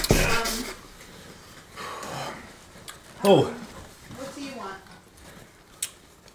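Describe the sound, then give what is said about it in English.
A harsh, raspy cough bursts out in the middle, with strained breathy gasps and throaty vocal noises before and after, then a short sharp sound near the end. “Oh shit, that cough was terrible.”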